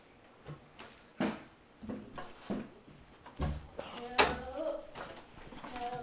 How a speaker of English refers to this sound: He's like standing in the door as we try to slam it.